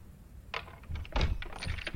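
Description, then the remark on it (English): A locked and barred library door is rattled and shaken, a quick series of clattering thunks and metallic jolts that grow louder and more insistent over a couple of seconds. “They already locked and barred the doors.”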